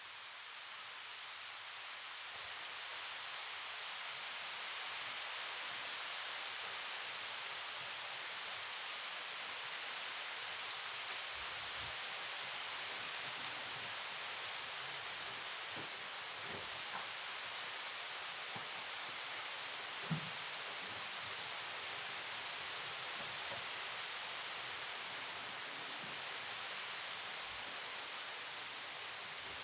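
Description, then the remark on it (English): Steady rain that has just started after a long dry spell falls outside as a constant, even hiss, with occasional soft drips and taps standing out now and then. No one speaks. “after hearing all that, the rain has just started here.”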